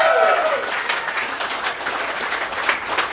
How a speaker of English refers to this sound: Hey, round of applause for everyone who's been on this stage so far. Can we do that one more round of applause?